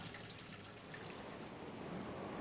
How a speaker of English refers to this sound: So what do you think is happening here? There's plenty of water movement, bulk rotation. But what about any local rotation?